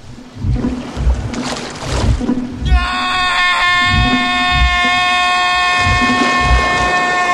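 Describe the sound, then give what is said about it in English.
Heavy water churns and splashes as a shark jumps out of the water, grabs a character and pulls him in; a loud, piercing scream from another character cuts in and holds steadily for several seconds while the thrashing and splashing continue underneath. “But man, Jazzy McJaw's face has hops because he's able to jump out of the water, grab MVP, and pull him into the water, prompting poor Jake to scream at him.”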